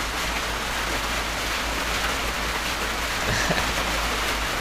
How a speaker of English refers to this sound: But as the rain picks up here, we might take a brief pause. So hang with us.